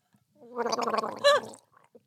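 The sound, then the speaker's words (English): A wet, bubbling gurgle lasting over a second from someone blowing bubbles in their drink, with a brief louder burst near the end before it fades. “Are you blowing bubbles in your drink?”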